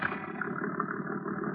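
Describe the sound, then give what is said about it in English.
A heavily loaded motorboat is taken out and heads out to sea; its engine runs steadily, a continuous low droning hum with a slightly rough, buzzing texture, even in loudness throughout, with no voices. “He's taking the boat out.”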